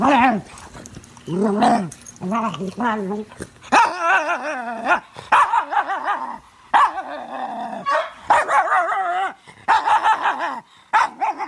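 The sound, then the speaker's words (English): A dog named Belle howls in long, wavering, tuneful bursts, rising and falling as though singing, with a human voice joining in over roughly a dozen seconds. “And this is me and the musical stylings of my dog, Belle.”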